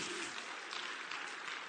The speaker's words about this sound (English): Can someone just clap a little bit?